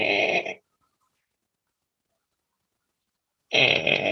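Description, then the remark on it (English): A voice imitates the slow creaking heard in the hallway of an old rickety house, twice, each a rough, strained burst lasting about half a second, separated by roughly three seconds of silence. “And I hear slow creaking in the hallway.”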